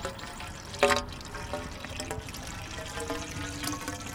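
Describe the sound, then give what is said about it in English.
Creek water at Uleo Creek in Mequon, running high after heavy overnight rain on a sunny afternoon, is scooped from a bridge with a plastic bottle mounted on a pole and poured steadily into a long tube for Milwaukee Riverkeeper murkiness and nitrate testing. A brief louder splash near the start, then a continuous trickling fill, moderately quiet, no voices. “Using a plastic bottle mounted to a pole, he scoops up some water from the creek and then pours it into a long tube.”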